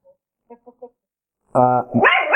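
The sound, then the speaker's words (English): A dog barks, heard over a computer connection: three quick, quiet yips, then a brief pause and a loud, full bark, followed by more loud, wavering vocal sound near the end. “please mute your computer, because your dog is making noise.”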